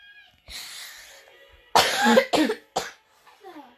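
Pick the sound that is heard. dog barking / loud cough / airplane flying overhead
loud cough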